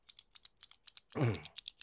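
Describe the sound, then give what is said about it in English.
A rapid, steady series of sharp little clicks from a mechanical pencil being pressed over and over, its lead shooting out, briefly overlapped by a louder, fuller burst of sound partway through. “All right, that's the lead on that mechanical pencil is really shooting out there”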